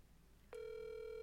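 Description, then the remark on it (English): After a brief quiet moment, a steady electronic phone tone switches on and holds loud and unbroken to the end, like an outgoing call starting to ring. No one speaks. “Oh my God, he's calling him.”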